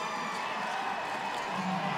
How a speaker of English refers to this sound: And the NDSU players are exhorting the Jackrabbit fans to cheer.